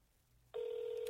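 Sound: telephone ringing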